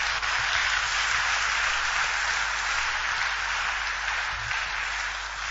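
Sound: audience applauding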